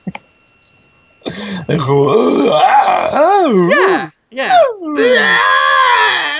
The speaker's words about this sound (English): And I'll reach down and I'll just jerk you off while screaming into the microphone. Nothing coherent, just screams.